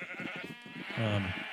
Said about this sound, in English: So this... then, do you hear sheep?